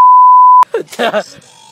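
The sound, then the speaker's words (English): A loud, steady single-pitch censor bleep covering a phone number holds for just over half a second, cutting off abruptly as a voice begins speaking a recorded voicemail greeting. “Just bleep it out. I think it's funny when you bleep it.”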